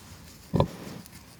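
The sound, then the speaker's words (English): A single short grunt from a pig on a farm, one of the sows late in pregnancy, rises out of a quiet, low background hum, then fades back to near silence. “So we've come down to see the pigs.”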